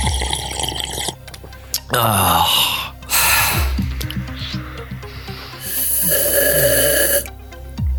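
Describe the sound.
Loud, airy slurps as someone sucks the last sips of tea from a cup, three harsh hissing bursts separated by short pauses, with a brief spoken exclamation between them.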